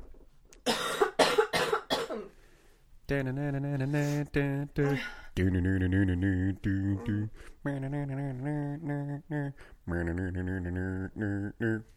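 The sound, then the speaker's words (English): A few harsh throat-clearing bursts in quick succession, followed by several seconds of sustained, wavering vocal tones, like someone humming or warming up their voice. “Well, let me clear my throat.”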